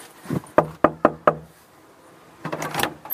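Four sharp, evenly spaced loud knocks on a wooden front door of a house, followed by a brief shuffling or rustling sound after a short pause.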